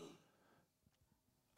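A short, breathy burst like a cough starts things off, then near silence, before another loud, harsh cough-like burst cuts in abruptly at the very end.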